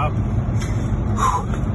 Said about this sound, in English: I'm in the car with my family on the way to Ottawa. And every overpass is packed with Canadians.